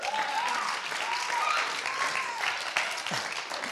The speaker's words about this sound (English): And so I want to tell you guys, thank you. Now keep clapping.